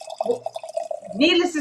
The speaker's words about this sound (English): Needless to say, we are still, as she's pouring her drink, sounds like a Coke commercial.